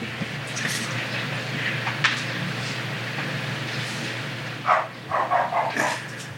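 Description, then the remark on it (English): Dogs bark over a steady low rumble: a single bark early on, then a quick burst of four or five sharp barks near the end, moderately loud. “Shut those dogs up.”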